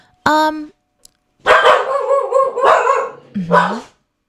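The speaker's own dogs bark: a sharp yelp, then a run of loud, overlapping barks and yaps from more than one dog, ending in a final bark that trails off.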